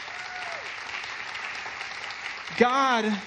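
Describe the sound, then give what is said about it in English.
An audience claps in a steady, dense wash of applause for a few seconds, then a single voice rises loudly over the clapping near the end. “If there's something worth clapping about, I think it's that.”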